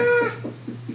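A cat lets out a drawn-out, tonal meow, followed by a few soft, low, evenly spaced murmuring chirps, over a steady low hum.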